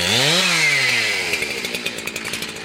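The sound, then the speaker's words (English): A chainsaw engine in Bolinas, California, revs up with a rising whine, then settles into a steady rough idle with rapid rhythmic sputtering, loud with no one speaking. “Meanwhile, as scientists continue to monitor the trees, birds, and butterflies, and the county continues to audit the number of eucalyptus felled, the townspeople of Bolinas keep one eye on each other and an ear cocked for the sound of chainsaws.”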